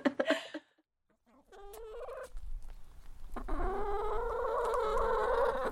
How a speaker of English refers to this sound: So I'm back on the farm, just giving the girls their breakfast. I obviously call my chickens my girls